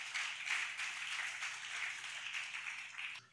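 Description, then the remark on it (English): A church audience applauds during a sermon on fasting, a dense wash of many hands clapping at once that holds at an even level for about three seconds before stopping abruptly. No voices are heard. “Oh, are you clapping?”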